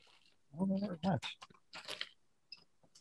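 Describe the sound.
Chewing of mastic gum: a few wet, crunchy bites and mouth clicks in quick succession, mixed with a short voiced murmur, then quieter scattered smacks near the end.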